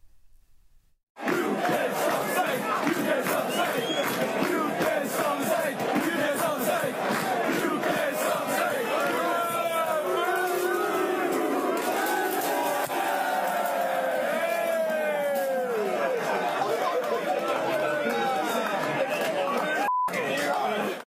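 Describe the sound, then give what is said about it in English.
A large cricket crowd at the MCG Test match on a hot day chants 'you can't stop the snake' after making a snake of plastic beer cups, a loud, unbroken wall of massed voices with rising yells, starting abruptly after a brief silence and holding steady for about twenty seconds. “So they've got all the plastic beer cups together and they're chanting, you can't stop the snake.”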